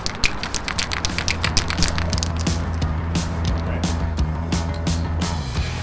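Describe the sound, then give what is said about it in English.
A Montreal graffiti artist shakes a spray paint can with a quick run of rattling clicks, then slower, spaced shakes, over a steady low rumble of traffic on Montreal's Highway 20 passing a few feet overhead, as he outlines 6-foot-tall letters on concrete. “That guy shaking the spray paint can is Rage 5, a Montreal graffiti artist.”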